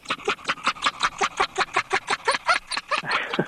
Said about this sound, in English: Can we play that audio of the dog laughing? Can we?